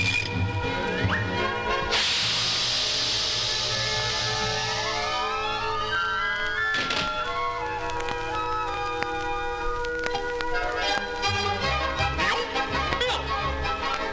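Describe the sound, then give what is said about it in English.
A loud fizzing hiss bursts out for a few seconds as a lit skyrocket shoved into the wolf's shirt catches fire. It then gives way to rising, whistling sweeps like a rocket taking off, all over busy orchestral music. “so he pushed another button on the machine, and an arm came down and shoved a skyrocket in the wolf's shirt, just as another arm lit a match. The skyrocket caught fire and...”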